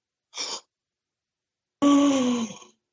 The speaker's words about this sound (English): And this time, I want you to gasp in astonishment at the end of this next sentence.